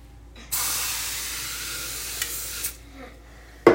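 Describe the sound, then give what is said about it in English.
A steady hiss of cooking spray onto a waffle iron lasting about two seconds, then fading into quiet before a sharp knock or clunk at the very end. No one speaks. “First, let's spray the waffle iron.”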